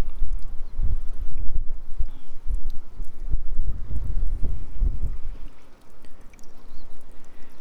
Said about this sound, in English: I'm next to the harbour in Boscastle. It is a wild and windy day today.